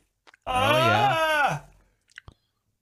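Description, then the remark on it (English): A congested person does a big stretch and yawn with a drawn-out, wavering groan lasting about a second, fairly loud, sliding down in pitch at the end, followed by a few faint mouth clicks. “Oh, stretch and yawn. The old stretch and yawn during congestion. Big stretch.”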